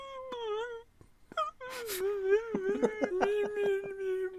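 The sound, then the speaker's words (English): A person's voice imitates a whining dire hound from a video game, with long, wavering high-pitched whines that rise and fall, broken by a short pause and a breathy burst, then a quivering, sobbing whimper. “Oh no, my dire hound is whining.”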